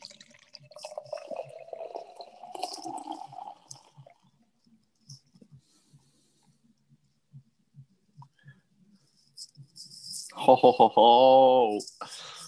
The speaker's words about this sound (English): Wow, it smells good. Dude, it smells good. It smells good. And with the pour.